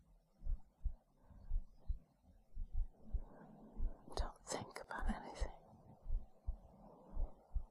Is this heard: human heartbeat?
yes